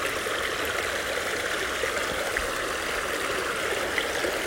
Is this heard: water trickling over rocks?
yes